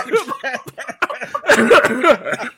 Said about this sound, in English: So, pardon my cough, by the way. I've been sick all week.